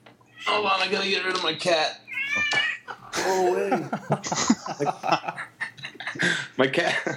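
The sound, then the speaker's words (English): A cat in heat lets out drawn-out, wavering yowls, mixed in with people talking and a bit of laughter. “Hold on, I gotta get rid of my cat. Go away. My cat is in heat.”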